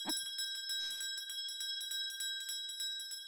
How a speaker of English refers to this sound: I'm going to put the bell on a little longer for the YouTube folks